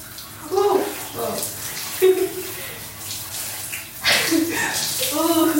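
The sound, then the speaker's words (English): Steady hiss of a handheld shower head spraying cold water during a cold shower, with short bursts of a person's voice, yelps or brief exclamations, breaking through the spray several times. “I did take like the handheld shower head.”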